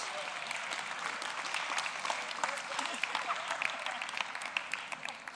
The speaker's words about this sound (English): So the bingo, the chocolates have gone. A round of applause.